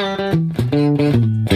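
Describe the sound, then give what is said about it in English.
Electric guitar played through a PettyJohn Chime low-drive overdrive pedal plays a short phrase of about six sustained, harmonically rich notes, steady in volume, with no one talking. “I don't know how you got it dialed, but obviously the chime is a little bit less drive than the iron.”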